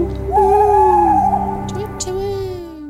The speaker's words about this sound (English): Woohoo! I like to think the owl's going, woohoo! It's another podcast from Great Big Owl.